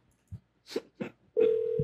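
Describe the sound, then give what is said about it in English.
After a few short, muffled knocks, a steady electronic ringback tone starts partway through and holds to the end, the buzzy hum of an outgoing phone call to Jamba Juice ringing on the line. “They'll be at the phones in just a moment.”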